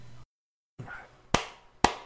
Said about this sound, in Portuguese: Ah, bate umas palmas aí pra ficar marcado e boa. Caraca, que alto.